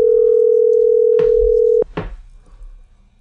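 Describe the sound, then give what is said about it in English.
A telephone ringback tone plays while calling a man, one steady, loud electronic hum lasting nearly two seconds, cutting off abruptly, followed by a couple of faint clicks and muffled line noise before the call is forwarded to voicemail. “I will bleep out his phone number if it goes to voicemail.”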